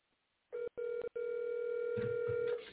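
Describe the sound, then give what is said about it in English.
A telephone line tone hums steadily after a couple of quick clicks and breaks, as a call is dialed to a woman and left ringing with no pickup, thin and narrow as if heard through a handset. “I'll tell her I'm calling her. Oh, now she don't want to answer the phone.”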